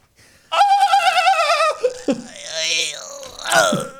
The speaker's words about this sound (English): Here's a fox mating call.